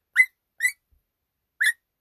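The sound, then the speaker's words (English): A voice imitates a dog with three short, high-pitched yips, two in quick succession and a third after a pause. There is no other talking. “it's a very good dog voice, but I hear them bark too much every day.”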